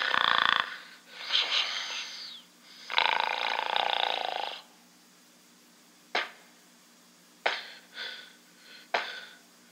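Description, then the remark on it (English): A green, scaled creature breathes through the gills on its neck in three long, hoarse, rasping pulls, followed by several short, sharp wheezing gasps, fairly loud, with no one speaking. “It's breathing out its gills, these things on its neck.”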